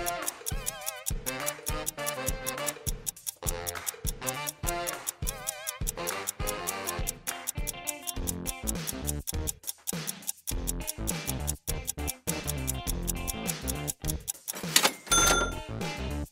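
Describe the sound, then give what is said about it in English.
A countdown clock ticks in a steady, quick rhythm over bright, tense backing music, loud with no voices, ending with a short flourish. “Time's a ticking, and your guests are waiting for their cake, so get going.”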